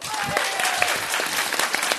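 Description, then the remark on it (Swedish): An audience claps to vote for a contestant, a young man in a cap and pink shirt, to win: a dense, steady burst of applause, many hands overlapping into a loud, even wash with occasional sharper slaps standing out. “Alla som tycker att killen i keps och rosa skjorta borde vinna, klappa nu!”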